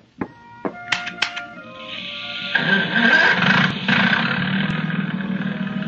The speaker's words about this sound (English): I just said the bold venture'd run like a dream. You want to hear it? If it makes you happy. All right. Wait till you hear that motor purr.